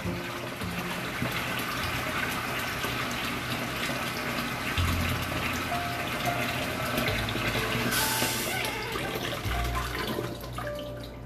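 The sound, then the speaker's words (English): Fresh water pours steadily from a tap, a continuous gush with a splashing hiss that swells briefly toward the end, with no voices. “Running some water right now, fresh water.”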